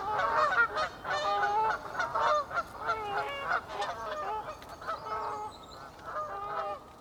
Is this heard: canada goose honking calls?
yes